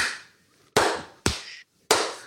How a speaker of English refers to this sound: Like I said, it was a simple clap on 2 and 4. Yeah, 2 and 4. I get it. 2 and 4, simple as that.